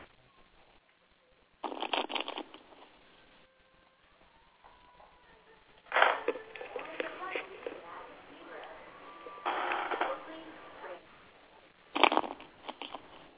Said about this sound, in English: the answer got me shuffling these cards of like 5 times. So bear with me.